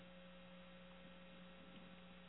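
A steady low electrical hum drones continuously with no variation, fairly quiet and constant, from an Eden Pure space heater running about 10 feet away in the room.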